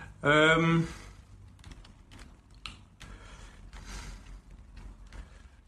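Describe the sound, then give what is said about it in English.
A short, loud tonal burst opens, followed by a series of soft, irregular mouse clicks as someone clicks repeatedly at a computer media player. “I'm having massive problems with my media player, sadly, which is really bad. I'm going to be here clicking this for ages.”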